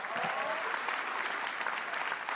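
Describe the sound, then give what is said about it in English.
An audience claps steadily and loudly throughout, a dense, continuous patter of many hands with no voices standing out. “If Walter listened to this show, he would be really touched by that applause.”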